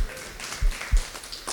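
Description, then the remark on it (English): An audience claps and applauds for itself for a brief moment, a scattered, moderately loud patter of many hands with a couple of heavier thumps mixed in and no voices over it. “Come on, that's you guys. Clap for yourself.”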